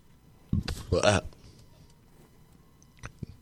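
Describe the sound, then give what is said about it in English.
A short burp from someone who has been drinking a lot of hot tea and honey, preceded by a quick throaty sound, followed by near silence and a couple of faint clicks. “Been drinking a lot of hot tea and honey lately. God, it makes you burp.”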